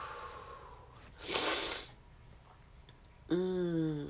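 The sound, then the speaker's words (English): A person yawns to release tension in their back: a long breathy intake of air is followed, after a pause, by a loud voiced yawn that dips and bends in pitch as it trails off. No one speaks. “I'm yawning. Yawn out the tension in my back.”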